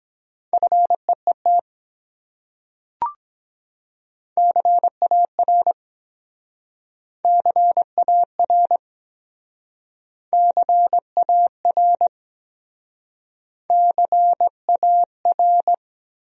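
Morse code sent at about 17 words per minute, spelling out common English words: a steady mid-pitched tone keyed into quick dots and dashes, arriving in five short bursts separated by pauses, with a single faint click early on.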